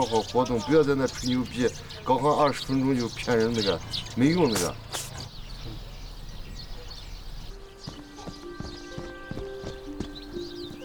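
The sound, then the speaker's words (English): Racehorses with riders thud rhythmically on turf training gallops at a stud farm, steady, with indistinct voices and animal calls over the first half, then quieter repeated hoofbeats against a faint outdoor background. “… is the first to arrive at the gallops each day. He keeps a close eye on both the horses and riders.”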